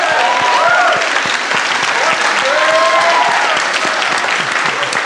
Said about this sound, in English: Ladies and gentlemen, I'm gonna let everyone ask a question or two before we go, but before that, that's sort of the end of the show, and I want everyone to just give an insane round of applause for all of these very smart people.